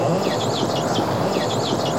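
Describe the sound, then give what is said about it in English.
Killer whale excitement calls: a rapid run of high, squeaky whistles that swoop up and down like a rubbed balloon, repeating over a steady wash of underwater noise, with no talking. “That's known in the literature as an excitement call, and it turned out that all around the planet, that's a common call.”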